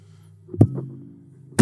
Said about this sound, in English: Banging the table. I'm upset right now.